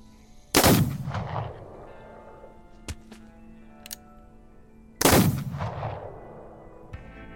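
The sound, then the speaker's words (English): Two loud gunshots ring out about four and a half seconds apart, each a sharp crack followed by a long echoing boom that rolls away, with faint clicks in the quiet between. “At the first gunshot, Jimmy jumps up into Chester like he expects you to catch him.”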